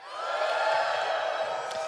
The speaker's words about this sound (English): Do you love sprouts or hate sprouts of the Brussels variety? Okay, give me a cheer if you love sprouts.